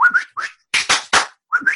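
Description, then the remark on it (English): A voice imitates a coach's whistle with short, rising two-note chirps, broken by three sharp handclaps, then the whistled chirps return, mimicking a coach with a group of kids and a ball. “The whistle, the clap.”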